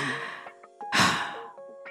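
A loud, exaggerated gasping breath swells in the middle, with breathy sighs before and after, delivered theatrically in an attempt to be dramatic, with no talking.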